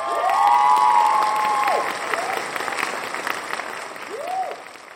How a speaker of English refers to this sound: Crowds of cheering people show up at the White House that afternoon to applaud their president.